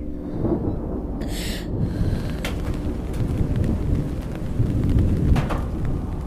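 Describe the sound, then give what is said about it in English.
Steady rainfall with deep, continuous thunder rumbling and rolling underneath, plus a brief hissing burst early on. No voices, just a dense, fairly loud storm throughout. “A funeral in the rain.”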